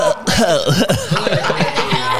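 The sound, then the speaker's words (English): A person gives a COVID cough in a rapid string of rough, voiced hacks lasting a couple of seconds, with a throaty, almost chuckling quality between bursts. “It was the COVID cough.”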